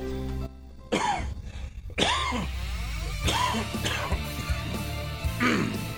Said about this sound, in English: Ah, shit. Sorry about that. Coughing with the mic open. Excuse me, man.